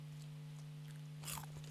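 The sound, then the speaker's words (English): A crunch as a crisp snack is bitten, a short burst of crackly noise over a steady low hum, followed by a couple of fainter chewing crunches. “Oh, that's a double cruncher.”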